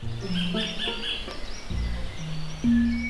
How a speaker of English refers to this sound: Kotari or kingfisher calling. Relatively common here. I record them on most of my weekly bird counts.